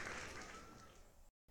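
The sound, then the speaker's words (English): Audience applause, a dense wash of clapping that holds steady for just over a second, then tapers slightly and cuts off abruptly into silence. No voices are heard. “Y'all just out here just chilling here, just cheering like this every single time? All right. All right, standing ovations?”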